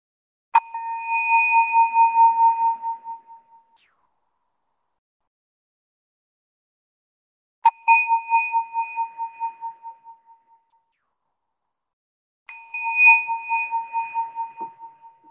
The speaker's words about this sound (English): And now, as we prepare to worship together, I invite you to settle in comfortably, take a deep breath, release any tension that you might be holding as we hear the ringing of the bell.